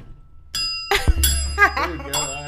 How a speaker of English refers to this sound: That is really a bell. Oh my God. Ring it.